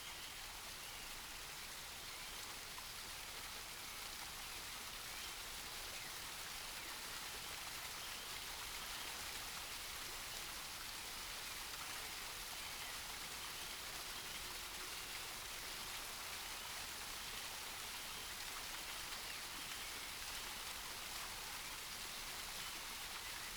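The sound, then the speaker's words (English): Steady, continuous rush of water cascading over rocks, a dense hiss that stays even throughout with no pauses, fairly soft, with no voices. “The sound of water cascading over the rocks is hypnotic. and you feel a sense of calm wash over you as you watch the water flow.”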